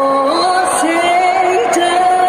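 A near-capacity stadium crowd cheers at the big boxing fight between Alvarez and Saunders at AT&T Stadium in Texas on a Saturday night, a steady loud roar of voices with rising shouts and whoops layered through it for the whole stretch.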